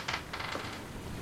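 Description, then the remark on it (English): Dice rolled in a brand new dice rolling tray during a tabletop game: a quick clatter of small hard objects tumbling and rattling, with a couple of bright bursts early on, moderately quiet, with no voices. “Oh, you don't like my brand new dice rolling tray?”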